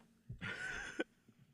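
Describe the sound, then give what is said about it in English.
A single rough, breathy cough bursts out at a music school, lasting about half a second and ending in a sharp catch, with quiet background noise around it. “I wasn't fucking coughing at all today, you know.”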